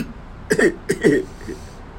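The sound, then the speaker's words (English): A man coughs twice in quick succession, two short, harsh bursts, followed by a faint trailing sound and quiet. “I haven't heard him cough in I don't know how long.”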